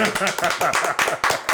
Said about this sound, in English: We got the whole crew back together today. We got to clap that shit up, bro.